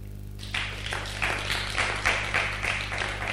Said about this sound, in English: let's clap for teachers.